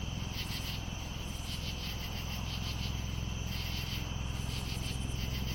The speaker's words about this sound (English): Now the sun is setting. Isn't it beautiful? Twilight is a good time to picture the world we want to live in. Let's listen to some nighttime insects.